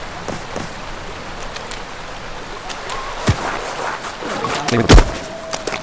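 water bottle being handled

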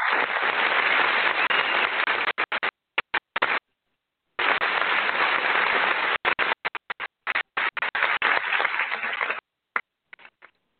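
applause sound effect

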